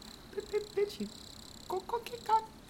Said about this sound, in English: If you listen closely, you'll hear the crickets in the lake.